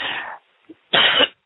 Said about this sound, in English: Just like that. All the way down from the stomach and cough them out in the name of Jesus.